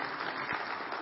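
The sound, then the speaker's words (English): Three people clap briefly, a soft, scattered patter of hands that stays fairly steady and quiet for about a second, with no voices over it. “Yeah, you can clap about that. That's good. Three of you did.”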